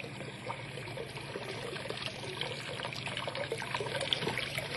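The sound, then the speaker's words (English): Water trickles and dribbles steadily through an opened wooden sluice gate, a thin, continuous splashing flow with no voices, growing slightly louder toward the end. “Well, at least I'm not sure, but that water, there ought to be a lot more water than that coming through the gate, a whole lot more.”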